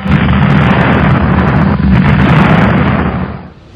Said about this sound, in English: What is that funny whining noise? It seems to be getting louder. It sounds like a plane crash.